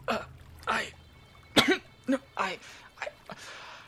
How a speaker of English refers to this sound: But the other thing is that when Anna said that she has a sister, Irene, you heard … in the background, like, sputter and start coughing. Do you need some water, friend?